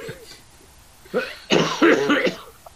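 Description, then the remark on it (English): Several harsh coughs come in quick succession, a short one followed by a louder, rougher burst that trails into throat-clearing, with faint voice-like sounds early on. “have you been taking quite a lot of cough medicine”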